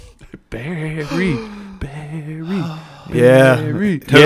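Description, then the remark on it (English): A single voice imitates a crowd gasping as Barry Sanders walks up to the podium, with three drawn-out, rising vocal 'ooh' sounds in a row, each one louder than the last and the final one loudest. “The crowd gasps.”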